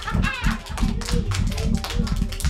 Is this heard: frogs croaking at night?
no